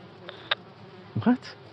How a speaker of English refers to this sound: They've now landed on some of the dead cattle. They're big bees, more like hornets, and the size of my hand. Oh, and they're burrowing through the wounds.